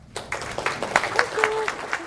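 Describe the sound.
Audience applause welcoming the speakers at a fall prevention talk in San Diego breaks out after a brief quiet start, a steady patter of many hands clapping at moderate volume, with a faint voice or whoop rising briefly in the middle.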